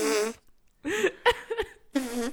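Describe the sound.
A series of loud wet arm farts made with a bare arm, sleeve rolled up: a long buzzing blurt, a sputtering broken middle stretch, then another sustained raspy squelch, with no talking.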